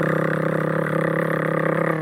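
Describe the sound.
A voice imitates a rotary tattoo machine with a steady, low, buzzing drone held unbroken for about two seconds, even in pitch and loudness, with no other talk.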